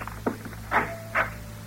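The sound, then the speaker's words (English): A door to a patient's room is opened without knocking, with a few short clicks and soft knocks of the latch and handle, fairly quiet, over a steady low hum, with no one speaking. “You'll notice I didn't bother knocking.”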